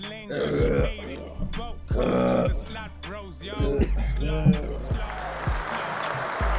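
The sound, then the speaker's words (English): Several loud, drawn-out burps follow one another after people chug drinks, deep and guttural with a rasping edge, while people laugh and react in the background. “Love the burps.”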